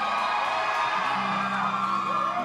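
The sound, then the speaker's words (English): A crowd cheers and whoops continuously for a man about to sing a Disney song, a dense, loud wash of voices with higher shouts rising above the roar, steady throughout with no clear pauses. “Come on, let's hear it for him. Come on, cheer him on.”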